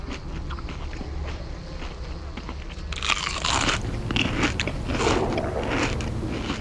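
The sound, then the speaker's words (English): Loud, wet open-mouthed chewing by a cannibal in Milwaukee, with repeated crunchy bites, continuous, growing busier and more intense in the second half over a low droning background. “This cannibal chews with his mouth open.”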